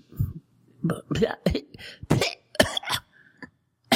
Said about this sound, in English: Coughing up a hairball there. Yeah, a hairball.